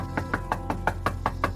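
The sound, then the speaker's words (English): Someone raps steadily on the front door of a two-story white house with black shutters, about eight quick, evenly spaced knocks in a row, moderately loud, with no voices. “As we wait for someone to answer the door, we look around at the property.”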